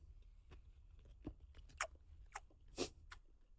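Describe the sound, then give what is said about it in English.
Crunchy chewing of a slightly spicy dish with nuts in it, right up close to the microphone, a handful of sharp, irregular crunches spaced about half a second apart against a quiet background, with no talking. “You have a lot of people saying, please don't chew too close to the mic.”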